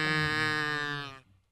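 A single loud, harsh game show buzzer blares steadily for just over a second, then cuts off abruptly into near silence, with no one talking.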